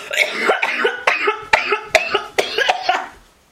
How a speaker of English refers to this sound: I'm already about to give y'all the cough level. The cough level's through the roof. I don't know if it's Daddy's blunt or the sweet tea, but that cough level, I definitely love it.